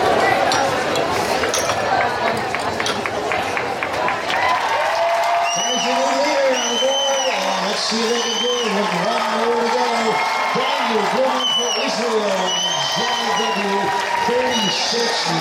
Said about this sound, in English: Let's listen to the excitement of the crowd and announcer during the last few seconds of Blumen's outstanding ride.